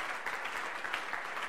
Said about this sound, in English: Give it a clap for the elderly ones in the house. God bless you.